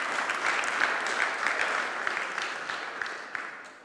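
A crowd claps steadily for a few seconds, a dense wash of many hands in a large room that swells briefly and then begins to taper off.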